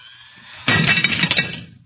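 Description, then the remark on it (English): A sudden, loud crash of a glass on the edge of a table shattering, with bright tinkling fragments scattering for about a second before fading out. A faint hum precedes the break. “Watch closely what happens to that glass on the edge of the table. Watch. It's amazing. The glass was shattered.”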